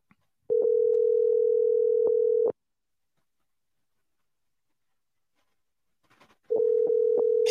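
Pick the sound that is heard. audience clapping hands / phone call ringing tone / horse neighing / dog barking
phone call ringing tone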